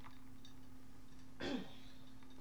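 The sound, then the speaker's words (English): A single short throat-clearing cough, a brief rough burst in the middle of an otherwise quiet stretch with a steady low hum underneath. “Like, I think something went down my throat wrong because I feel like I'm about to cough.”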